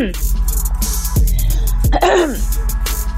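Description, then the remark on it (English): Someone clears their throat: several loud, raspy, gravelly rumbles with a couple of sharp catches, ending in a brief voiced hum. No words are spoken. “Leave me clear my throat in there”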